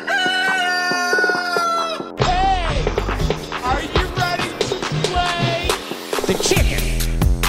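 A rooster crows loudly, then a flurry of chickens clucking and squawking takes over, busy and continuous amid a cluttered, lively backdrop.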